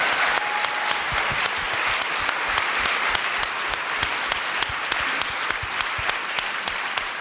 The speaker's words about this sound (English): It's very true, so thank you, Sylvie. Let's give Sylvie a round of applause.